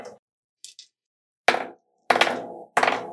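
Four dice are rolled for will: a couple of light clicks, then three loud, sharp clattering bursts, each rattling briefly before settling, with short silences between and no voices.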